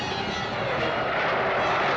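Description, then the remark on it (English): A jet aircraft roars loudly and close by, its engine noise a dense, steady rush for the full two seconds, with no voices. “Melody has got to pull out of this dive. And she has.”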